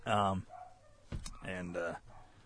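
A dog barks agitatedly in a few sharp, harmonic bursts, with a brief gap between them and a clattering noise in the middle.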